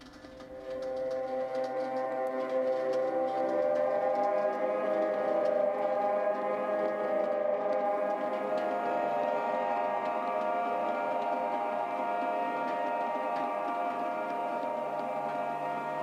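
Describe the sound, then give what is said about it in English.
Bells toll, marking the hours and used to connect the songs of an album; their deep ringing tones blend into a dense, sustained wash of overlapping resonance that holds steady for the whole stretch, with no voices. “And what I love about the album is that each of the songs is connected by the tolling of bells.”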